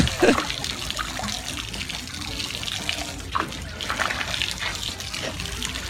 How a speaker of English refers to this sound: Is this dogs fighting under a waterfall, dogs in a plastic tub getting a hose bath, or dogs jumping in and out of a walk-in shower?